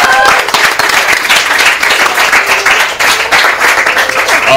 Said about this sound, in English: So, I want to thank our audience for coming out. Woo! Big round of applause.